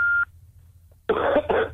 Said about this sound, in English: Coughing.